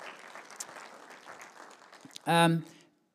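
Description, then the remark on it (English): An audience applauds a man, clapping steadily in a soft, crackling wash for about two seconds, then a short, loud, pitched whoop-like sound bursts out over the fading applause. “And give him a round of applause.”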